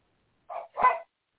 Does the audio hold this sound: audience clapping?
no